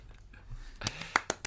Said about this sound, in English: Claps, claps.